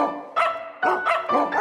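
A dog named Pyret barks in a quick run of four or five sharp, fairly loud yaps in a short dog jingle, set against a steady harmonic musical background.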